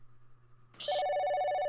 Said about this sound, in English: Then you hear you feel the buzzing and hear that phone begin to ring.